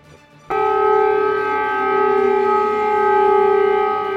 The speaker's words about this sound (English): In the last hour or so, sirens could be heard across Kyiv, warning Ukrainians of possible airstrikes.